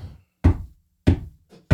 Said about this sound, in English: And if she don't live with her mom, how you knocking on the door?